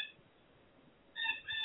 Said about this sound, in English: Is that the bird singing for us out there? Yeah, yes. The birds are great.